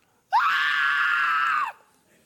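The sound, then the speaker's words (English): A single sustained, high-pitched scream voiced by a person in imitation, loud, holding steady for over a second before cutting off abruptly. “That's what it sounds like.”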